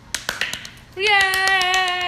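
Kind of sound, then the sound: human body sound, hands clapping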